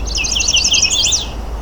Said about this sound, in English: There we go, chestnut sided warbler. Fairly close up. And now he's flown off.